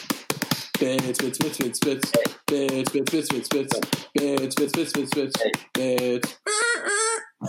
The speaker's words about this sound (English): Wow, a little bit of a bird squeal at the end.